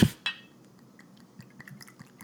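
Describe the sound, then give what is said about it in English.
Two bright glass clinks ring out, then a quiet stretch of soft, scattered glassware taps and light splashing as shots are poured, with no one talking. “I don't know if I should have that on the thing, like the pouring every time.”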